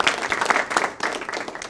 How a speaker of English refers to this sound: Believe me, that virtual applause thing, it's really, really cool.